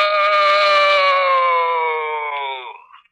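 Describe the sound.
A man voicing a ghost character lets out a long, loud ghostly groan: a single sustained wavering moan that slides slowly downward in pitch for about three seconds before trailing off.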